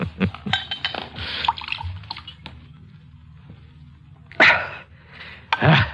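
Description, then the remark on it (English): Wine glugs and splashes as it is poured from a bottle: a few liquid bursts near the start, then two louder gurgling pours later, over a low background hum. “Help me open the bottle.”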